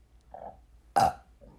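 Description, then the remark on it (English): A short run of burps: a soft one, then a loud, raspy belch, then a fainter one trailing after. Clear, with no talking. “Oh my God, it was almost 5 burps in a row.”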